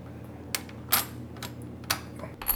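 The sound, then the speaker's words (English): Metal board game pieces clink together in a handful of light, sharp taps at an uneven pace, fairly quiet, with no one speaking. “Yeah, I usually look for that kind of sound in a game with coins.”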